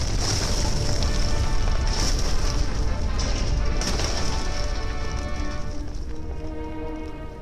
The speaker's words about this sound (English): There goes the garage. Don't get out behind cover now. The house is coming down with it.